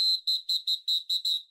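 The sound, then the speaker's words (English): A whistle blows seven quick, shrill blasts in an even, steady rhythm, each piercing note about the same loudness, with no voices around it. “But alright guys, that's the whistle telling me I have to wrap this podcast up.”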